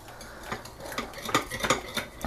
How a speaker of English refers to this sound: This is very easy to do. You can also just use a fork. You don't have to use a wire whisk if you don't want to. And we're just mixing it together. If you're dealing with two eggs, then you'll have a little bit of extra whisking to do.